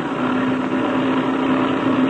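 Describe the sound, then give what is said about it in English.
A loud, steady airplane engine roars as a blue-winged plane takes off, a continuous droning rumble with a constant humming pitch and no change in intensity for about two seconds. No voices. “It sounds like that blue wing plane is taking off.”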